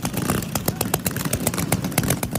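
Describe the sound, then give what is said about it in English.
Small off-road, not street-legal motorbike engines ridden by a group of bikers in Hollywood buzz and rev continuously, a dense, rasping drone with sharp throttle bursts, and faint voices mixed in underneath. “They say by biker thugs, but they're literally like driving these little like not street legal motorbikes.”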